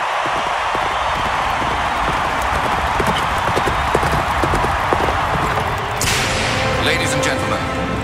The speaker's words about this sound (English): dad was the lone rider in the Sydney Olympics opening ceremony. He started the ceremony. The lights dimmed. A man on a horse rides out to the middle of the arena, rears up and cracks his whip, and then Sydney 2000 began. This is what it sounded like.